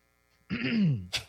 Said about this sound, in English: Clear your throat.